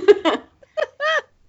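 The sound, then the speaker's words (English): A person gives a quick, breathy giggle and then a short, nasal imitation of a cat's meow, its pitch bending up and down, fairly loud. “pretend to be a little kitty cat or a neighbor from Home Improvement, he's doing it currently”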